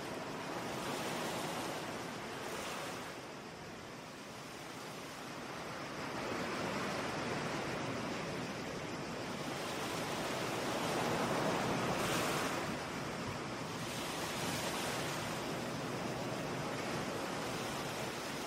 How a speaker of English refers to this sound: And hear the sound of the shoreline where hermit crabs make their home.